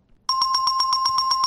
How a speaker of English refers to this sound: New sponsor alert. Ring that bell while you're thinking.